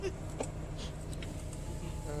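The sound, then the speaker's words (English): A truck door lock clunks shut with a short mechanical click, heard from inside the truck over a steady low engine rumble, followed by a few faint rattles. “He locked the door.”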